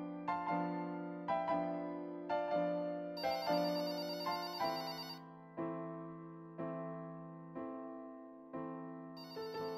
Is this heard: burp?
no